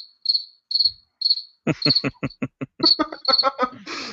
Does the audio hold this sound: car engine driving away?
no